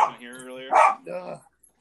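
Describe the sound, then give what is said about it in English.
A few quick, high-pitched barks and yaps from a Cheagle dog in a fairly loud burst: a drawn-out whiny bark, a sharp yip, then one more bark before it goes quiet. “They're the most annoying dogs in the world.”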